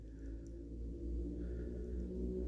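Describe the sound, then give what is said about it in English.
A car passes outside, heard as a faint, low, steady rumble that swells slightly midway. No one speaks. “You know, it's funny, like I always, outside noise, a car.”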